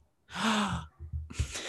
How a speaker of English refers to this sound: I don't know why I gasped so hard at this.